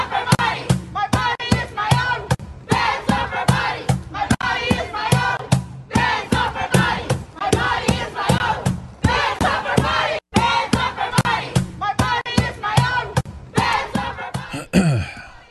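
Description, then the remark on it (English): A loud crowd shouts and chants in steady, rhythmic bursts of many voices, repeating roughly every second for the whole stretch, with a brief break near the end. “This is the crowd they're preventing from having abortions.”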